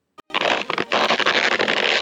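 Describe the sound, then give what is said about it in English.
A whoopee cushion lets out a long, loud, raspy fart noise that sputters and flutters for nearly two seconds after a short click at the start, with no voices. “Now why are you exploring my whoopee cushions, young man?”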